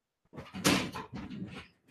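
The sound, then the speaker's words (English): An aluminum door is pushed shut, a sharp knock followed by about a second of rattling and scraping that settles, then a brief thump at the end. “you got to close the door, man.”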